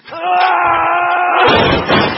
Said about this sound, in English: Oh, shit, Trent, you knocked over my bongo.